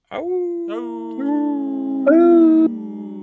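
Several wolves howl in a layered chorus, long sustained tones rising and overlapping in staggered entries, loud, lasting about three seconds with no talking.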